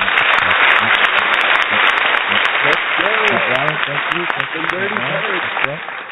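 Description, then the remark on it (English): A dense burst of applause for the Falcons, who won the day before, many hands clapping steadily for about six seconds at a loud, even level, with voices calling out and cheering underneath in the second half. “Your Falcons won yesterday, so we got to give them a round of applause right about now, right?”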